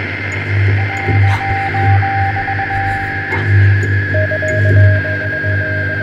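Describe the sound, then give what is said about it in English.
A steady, loud electrical hum runs under a bed of crackling radio static, while a thin, stuttering radio signal beep pulses on and off in two stretches. No one speaks. “The beep of the signal grew and echoed not just from the radio, but from the walls and the waves and the cliffs and the inside of my skull.”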